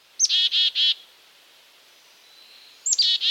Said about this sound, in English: Now, if a bird were named for its song, this bird would probably be called a phoebe. But it isn't. It's a black-capped chickadee. It's the call for which the chickadee got its name.